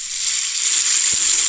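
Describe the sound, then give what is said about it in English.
A steady, bright hiss of running tap water played by the Silent Lou toilet app, continuous and fairly loud throughout, with a brief low thump near the end and no voices. “A tap.”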